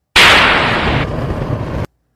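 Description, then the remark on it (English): A can of Liquid Death canned water is cracked open with a sharp, loud burst, followed by a rough, steady fizzing rush that runs for under two seconds and then cuts off abruptly. No one speaks. “I crack it open. I take a sip.”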